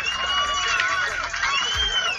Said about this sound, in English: Give a big round of applause, y'all.